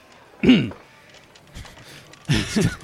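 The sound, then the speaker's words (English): A voice clears its throat in short, rough, gravelly bursts: one loud grunt near the start, then a brief pause before a second, longer clearing with a couple of pulses. Fairly loud. “Let me clear my throat.”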